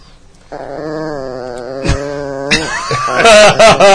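A chihuahua growls steadily at another dog in a wavering snarl, then breaks into sharper, louder yipping snarls toward the end, with no one talking.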